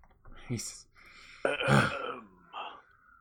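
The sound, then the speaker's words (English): A voice awkwardly clears its throat a few times in short, rough bursts, with a louder, gravelly cough-like rasp in the middle, fairly loud with no words spoken. “But awkwardly cough until he introduces everyone.”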